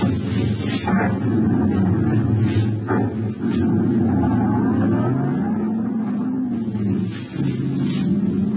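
A car engine rumbles steadily in the rain, then its pitch climbs as the car pulls away and accelerates, with a few sharp knocks and a constant wash of road or wind noise.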